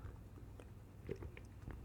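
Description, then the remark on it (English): Quiet mouth sounds of someone sipping water, a few soft wet clicks and gulps spread over a couple of seconds against a low steady hum, with no talking. “Still gotta sip the slurpums down.”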